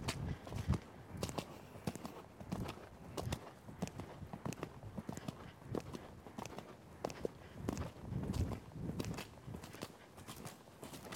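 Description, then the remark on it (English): Steady, rhythmic hoofbeats of a ridden horse cantering on soft ground 10 to 15 feet off the rail, with repeated muffled thuds forming a rolling three-beat pattern and no voices. “I just try to catch him and say, whoops, but I really want to keep cantering.”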